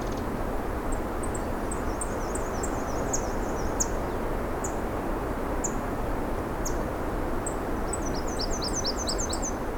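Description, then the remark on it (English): A Nashville warbler sings thin, high, quick repeated notes in short bursts over a steady hiss of background noise, with a final run of rapid chirps near the end. “What's that sound? So it's Nashville warbler.”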